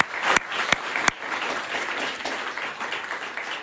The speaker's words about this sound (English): Oh, yes, thank you very much. Let's give a round of applause to the youth that helped out and everything that was going on here.